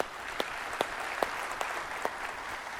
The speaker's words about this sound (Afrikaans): Kan ons vir hulle lekker hande klap gee?